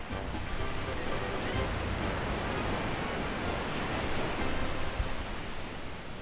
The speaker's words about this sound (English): Now we're under the boardwalk. You hear those waves crashing, just my dude?